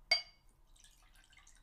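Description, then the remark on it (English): A single bright glass clink rings out, followed by faint, scattered trickling of gin being poured into a glass. Quiet, with no voices. “Pour Alex a fat gin, because we're getting drunk tonight, bitches.”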